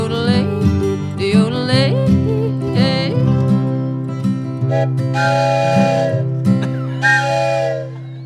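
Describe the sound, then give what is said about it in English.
A locomotive whistle sound on the original recording of an old railroad song wails in long, sliding, chord-like tones over a steady low drone, with two hissy bursts near the end. “The yodeling and the locomotive sound are on the original recording.”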